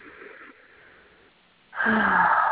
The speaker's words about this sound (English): And take a deep breath, breathing in through the nose. Feeling your chest expand and exhaling. Breathing in deep